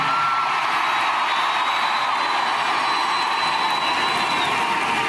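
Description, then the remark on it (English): A large crowd at a singer's concert roars and cheers continuously, a dense wash of voices and applause filling the space without pause, loud and steady throughout with no clear speech. “Here's a little bit more of … with that crowd.”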